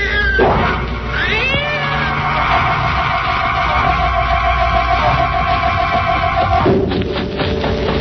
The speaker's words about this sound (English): Look behind us. Yes, I can see it now. It's a cat. And there's a woman with it.